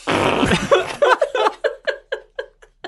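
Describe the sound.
A loud, raspy fart noise opens with a noisy blast, then breaks into a rapid run of sputtering puffs that gradually fade and slow. No talking is heard.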